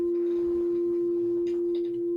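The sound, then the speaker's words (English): A steady synthesizer tone, a phase-modulated sine wave, hums loudly and continuously throughout, with faint shimmering overtones flickering above it near the end. No voices are heard. “But having phase modulation for a sine wave is pretty nice too.”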